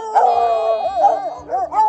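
A hunting dog bays in long, wavering howls that rise and fall in pitch, loud, with a few short breaks between drawn-out cries and no talking.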